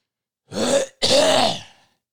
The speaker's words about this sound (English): That's the seasonal allergies, but I want to cough dramatically so my neighbors think I have it.